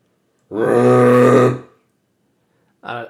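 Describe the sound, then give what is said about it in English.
A person imitates a sea lion with a loud, low, guttural bark lasting about a second, then a shorter, quieter grunt follows after a pause. No other talking. “Can you do a sea lion sound? How do they sound?”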